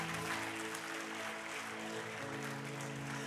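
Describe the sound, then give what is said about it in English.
An audience claps in praise of the Lord, a dense, steady wash of many hands sustained throughout, with held keyboard chords sounding underneath. “All right, give the Lord a clap of praise.”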